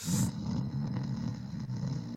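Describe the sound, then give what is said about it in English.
A voice imitates a snore: one long, deep, rattling rumble lasting about two seconds, loud, with a heavy echo effect trailing off at the end. “Is there any way you could snore with the echo on?”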